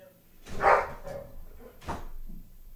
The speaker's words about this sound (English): On top of the dogs barking like fucking crazy?